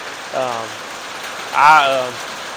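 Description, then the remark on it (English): Steady outdoor rain makes a continuous soft hiss throughout, with two short tonal voice-like sounds rising briefly above it, one early and a louder one later. “I love to hear the rain.”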